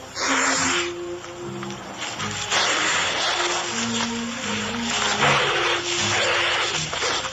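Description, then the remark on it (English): An adult turkey vulture, a medium-sized, mostly black vulture with a red, featherless head and upper neck, hisses in a long series of harsh, breathy, rasping bursts, each lasting a second or more with brief gaps between, steady and fairly loud, with no talking. “Our bird is the turkey vulture, a medium-sized vulture, mostly black with a red, featherless head and upper neck.”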